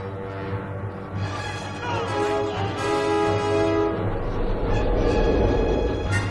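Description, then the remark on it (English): A train, the iron horse in a scene from the film Night at the Museum, starts up and gets going: a steady low rumble under shifting whistle-like tones, growing louder and noisier as it picks up. No one speaks. “Fire up the iron horse, boys.”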